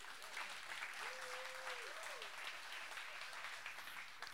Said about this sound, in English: This is a good time to clap.